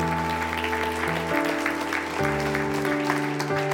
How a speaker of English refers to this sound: That was a good time to clap.